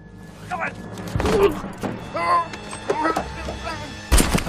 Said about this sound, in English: And then that's where, he gets shot. And it is like a really gruesome gunshot. Yeah. That you don't typically see. Brutal. Yeah, it's pretty brutal.